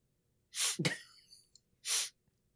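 A man sniffs: two short, airy sniffs separated by a sharper, voiced nasal burst in between, all fairly loud with no talking.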